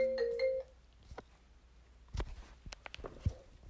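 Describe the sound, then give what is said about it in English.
A phone ringtone from an incoming call sounds briefly at the start, a short electronic melodic chime, then cuts off, followed by quiet shuffling, footsteps and handling clicks. No one speaks. “I got a phone call and I tried to ignore it, but it messed it up.”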